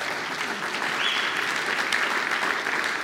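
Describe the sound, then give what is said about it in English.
A church audience applauds the Packing Hope event, at which over 50,000 meals were packed in 2 hours; a dense wash of many hands clapping at an even, sustained level with no voices standing out. “We can give it applause for that, yeah.”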